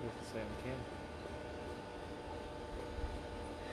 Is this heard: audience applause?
no